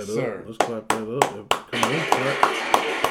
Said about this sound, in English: Let's clap that up.